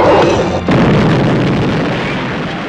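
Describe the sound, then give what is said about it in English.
A massive, loud explosion with a deep rumbling roar as a plunger sets off an explosive charge and a mine caves in with workers inside, followed by a continuous wash of crashing debris and rumble that sustains without fading, filling the whole area with dust. “he smashes the plunger when the mine caves in with all the workers inside. It's just a massive explosion, fills the whole area with dust.”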